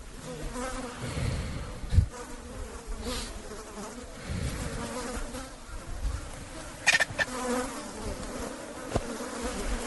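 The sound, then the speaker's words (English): Flies buzzing close by steadily for the whole stretch, a continuous droning hum that swells and fades slightly as they move, with a few brief louder rustles and clicks scattered through. “Oh, and there's flies there, too.”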